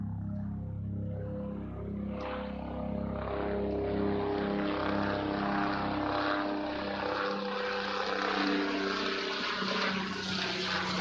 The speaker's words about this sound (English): Okay. The helicopter just landed. I gotta go. All right, talk to you later. No, I'm just playing.